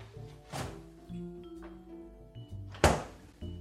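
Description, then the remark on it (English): A fridge door opens with a soft thump as an egg is taken out, then after a pause of about two seconds it shuts with a louder, heavier thunk, with faint rattles and a low steady hum in between. “Next thing, we're gonna grab our beauty egg from the fridge.”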